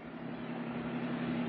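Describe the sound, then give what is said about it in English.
A second-hand car's engine hums steadily, a low, even drone with a constant pitch that neither rises nor fades. No voices are heard. “Buys like a top, don't she? It's a very nice car”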